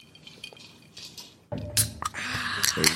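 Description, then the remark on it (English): After a quiet moment with a few faint clinks, liquid splashes and streams steadily into a glass, a continuous gurgling pour with light glassy ringing, and no voices. “Fill it to the top. Don't splash. Don't splash. A little splash.”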